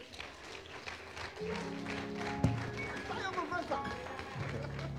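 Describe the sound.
An audience claps for themselves at the speaker's request during a teaching, a steady, dense rattle of many hands at moderate loudness, with a few voices calling out over the applause and one sharp louder clap midway.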